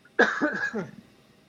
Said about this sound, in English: Excuse me, just gonna cough.